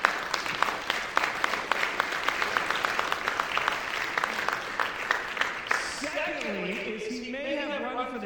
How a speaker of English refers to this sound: And so thank you for continuing to faithfully serve Jesus. And can we give them a round of applause just for...